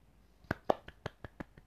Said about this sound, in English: I'm clapping.